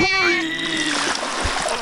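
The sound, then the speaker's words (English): A loud splash into water with churning, bubbling noise, while a high tonal whine glides downward over it; brief, with no talking. “I go deep into the water right now.”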